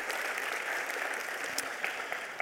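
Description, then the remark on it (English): An audience claps steadily, a dense, even wash of applause that holds at a fairly constant level for a couple of seconds with no voices standing out. “Just give a round of applause for that.”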